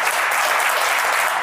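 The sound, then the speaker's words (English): A steady wash of audience applause for a guest after an interview, dense overlapping claps holding a loud, even level for the whole stretch with no voices breaking through. “Let's clap it up”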